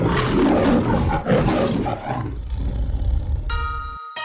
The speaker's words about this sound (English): The voice is like play the roar from MGM. Edit in the MGM lion roar at the end of this episode?